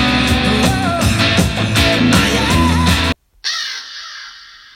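Harsh, raspy crow caws repeat loudly over a dense backing sound, then cut off briefly before one last scratchy call trails away.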